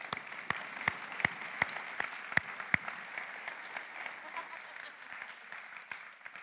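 A crowd breaks into applause, a dense wash of clapping with a few sharp, evenly spaced claps standing out early on before the noise settles into a steady patter.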